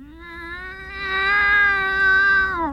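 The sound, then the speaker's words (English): A single long, drawn-out yowl from a male cat while mating, loud, swelling in the middle and holding a steady wavering pitch for nearly three seconds before trailing off. No one speaks. “Why, he's getting lucky.”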